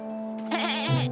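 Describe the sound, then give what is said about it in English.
A single goat named Brownie bleats, a wavering, nasal cry of about a second that ends in a lower, rougher note, with a steady low hum underneath. “I said quiet, you naughty little goat.”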